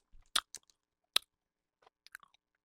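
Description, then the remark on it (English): Sticky chewing of a Hi-Chew candy, with a few sharp, wet smacks and clicks spaced irregularly, fairly quiet and without any talking. “This is a high chew? You got it.”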